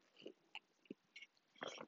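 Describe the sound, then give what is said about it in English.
Someone slurps a sip of coffee: a few short, wet sucking bursts spread over a couple of seconds, quiet overall, with no talking. “I'm going to take a sip of my coffee.”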